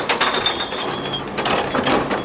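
A City of Chicago recycling truck dumps blue recycling carts in an alley, a dense, steady clatter of tumbling bottles and cans with glassy clinks over a mechanical, ratcheting rumble, loud throughout and with no voices.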